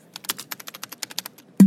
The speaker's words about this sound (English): He crouched over his keyboard and messaged the group.